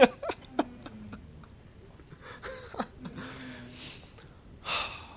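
A dog whimpers and whines in short, wavering high-pitched cries, mixed with breathy snorts and huffs. Fairly faint, with no talking over it.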